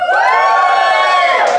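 An audience whoops and cheers loudly and continuously in support of the prosecution, a dense wall of high-pitched voices holding steady for under two seconds with a few rising shouts near the end.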